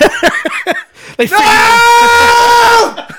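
A few short, clipped vocal bursts lead into a loud, sustained yell held for over a second, strained and piercing before cutting off abruptly.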